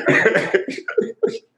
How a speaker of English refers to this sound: You got a touch of COVID? See, like a little nasal and a cough, a little.